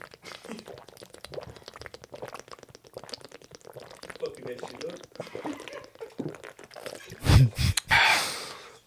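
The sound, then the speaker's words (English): Someone drinks water from a bottle, with a steady run of soft gulps and liquid sloshing, ending in a couple of loud, breathy bursts like a gasp and the bottle being handled. “And it's like, hold on, sorry guys. Water break.”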